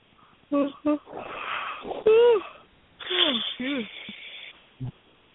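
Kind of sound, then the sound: human body sound, yawning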